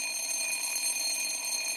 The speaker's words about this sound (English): But let's be honest, we're hearing a lot fewer of those bells in hallways this fall.